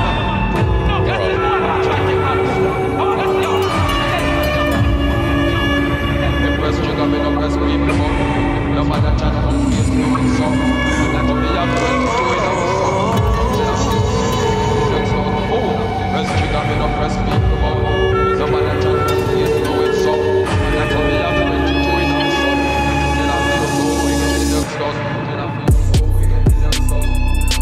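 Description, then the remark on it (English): A song blending Spanish guitar with electric guitar plays steadily and loudly for the whole stretch, layered over a deep, thick low end, with the texture thinning briefly near the end. “Bro, the Spanish guitar mixed with the electric guitar.”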